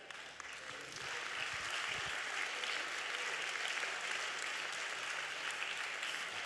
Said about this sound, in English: I appreciate that golf clap